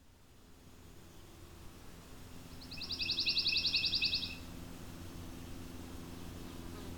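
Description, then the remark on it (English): A pine warbler, a small yellow warbler, sings one musical trill: a quick, even run of identical high notes lasting about a second and a half, clear over a steady low rumble of background noise. “The pine warbler is a small yellow warbler that, true to its name, is found in the pine forests of eastern North America.”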